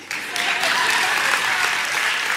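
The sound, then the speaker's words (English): An audience claps once in unison on request, a dense burst of applause that fills a couple of seconds, with no one speaking over it. “One clap.”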